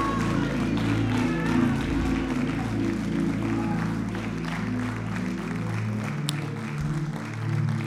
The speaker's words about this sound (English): Everybody put your hands together. Bless you, band. Thank you, worship team. Come on, put your hands together.